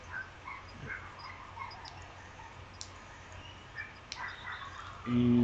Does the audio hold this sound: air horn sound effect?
no